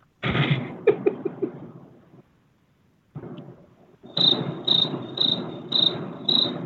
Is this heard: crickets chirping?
yes